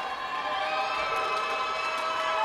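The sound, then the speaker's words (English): A large crowd roars and cheers, coming to its feet in the final seconds as Middle Tennessee wins a 2021 Cancun Challenge game against the Bears; a dense, sustained wash of voices stays loud and steady throughout, with no single voice standing out. “Crowd coming to its feet across the way.”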